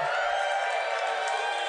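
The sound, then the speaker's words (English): A crowd of about 300 people cheering in a steady, dense roar of many voices, with no single voice standing out, holding at an even level for under two seconds. “A percentage of 1,000 people cheer you.”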